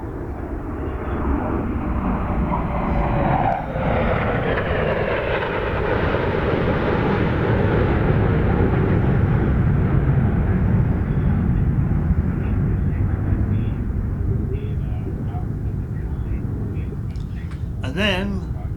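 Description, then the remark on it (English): An airplane passes overhead with a loud, steady roar that swells and slowly shifts in pitch as it crosses, then begins to fade, with a brief high chirp near the end. Recorded with an Olympus LS14. “Oh yes, we need some more airplanes, don't we? Come here, airplane.”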